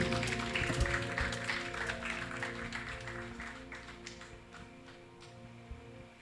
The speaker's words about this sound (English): The applause says it all, doesn't it?